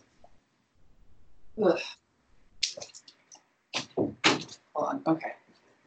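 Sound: door being closed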